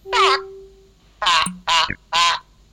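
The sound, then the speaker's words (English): A person imitates a chicken with four loud, nasal squawking clucks: one drawn-out call, a brief pause, then three quick ones in a row. “Did you hear that chicken? I think that was … being a chicken.”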